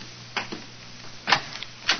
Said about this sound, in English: Come on, let's try this door.